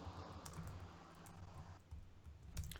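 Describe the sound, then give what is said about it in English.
Rapid, hard clacking of keys on a computer keyboard, fairly loud, with a steady stream of irregular taps and a few heavier strikes toward the end. “You're typing hard as hell.”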